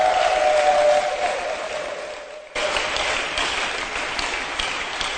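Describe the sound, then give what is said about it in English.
An audience claps for their pastor as he takes a seat, in steady, dense applause for several seconds, with a faint sustained tone underneath at first. The clapping briefly drops out, then resumes at the same strong level. “Let's clap for our pastor as he takes a seat.”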